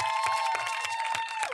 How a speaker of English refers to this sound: The more you keep clapping for God, the more he makes all doors open.